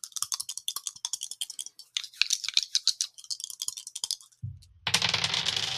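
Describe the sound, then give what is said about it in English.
A rapid clatter of a d8 and a d4 die rattling together in a hand or container for several seconds, followed by a brief pause and then a steady, rough rolling rush to the end. “I got a d8 and I've got a d4. There's a lot of dice in here.”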